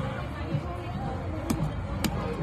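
Two sharp, hollow slaps of a hand against a pumpkin at a pumpkin patch, about half a second apart, ring out over a steady outdoor background of murmur and hiss.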